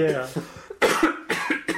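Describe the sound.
A person coughs three times in quick succession, fairly loud, with harsh, breathy bursts that follow a short voiced sound at the start.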